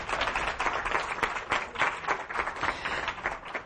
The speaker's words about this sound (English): So I think she deserves a round of applause.